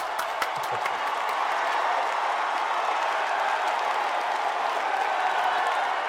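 Steady, dense applause from an audience, a continuous wash of many hands clapping at an even, fairly loud level throughout, with no voices standing out.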